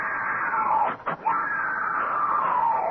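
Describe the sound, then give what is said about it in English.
A woman who has just woken screams loudly and continuously for about three seconds, her high, strained cry briefly breaking off once before resuming. “She's awake. Don't let her scream.”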